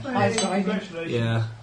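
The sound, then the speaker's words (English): Champagne glasses clink and clatter against each other as they are being filled, with a bright ringing tap near the start, while voices murmur steadily underneath at a moderate level. “Oh, see, the glasses are getting fuller and fuller. Yeah, don't pour so much in it until you've poured.”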